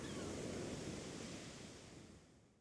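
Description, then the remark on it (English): Ocean waves wash in a continuous rushing roar of surf, full at first, then gradually fading away over a few seconds. No voices are present. “There was only now, this moment, as we stood on the bare rock, sharing the harsh blue sky, listening to the cries of the gulls and the keening waves.”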